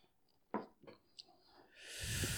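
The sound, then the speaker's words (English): Dice clatter across a surface in a few quick, sharp clicks, fairly quiet, rolling a 21, before a steady, loud rushing noise takes over. “Actually, I'm going to use this dice.”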